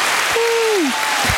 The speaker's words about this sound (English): I think that is a major accomplishment, and I'm just so happy it happened during Black History Month. Go ahead. You can give a round of applause right. for that.